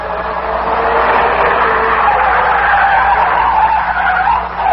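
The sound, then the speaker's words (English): A car skids and swerves out of control, circling wildly, tires squealing continuously over a loud, steady engine roar for nearly five seconds. “the car began to circle wildly.”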